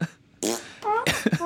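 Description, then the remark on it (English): A voice blurts out a rapid series of wet, buzzy fart imitations for a prank gun that makes fart sounds with every shot, four or five sputtering bursts in quick succession after a brief quiet start, fairly loud. “Every time you shoot, it makes fart sounds out of your gun.”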